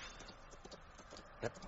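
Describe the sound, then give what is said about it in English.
Steady clip-clop of a white horse's hooves on a hard surface, a rhythmic series of fairly quiet hoofbeats with one louder strike near the end, as the horse approaches. “That doesn't sound like a Black Rider's horse.”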